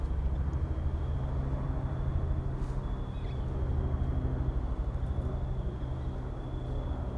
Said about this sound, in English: There's a plane.